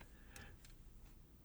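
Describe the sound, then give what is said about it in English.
A few soft, sharp clicks, like a computer mouse being clicked while someone clicks around on a computer, come at irregular intervals, faint, over a low steady background hum. “Here, you can look at it on my phone so you're not clicking around.”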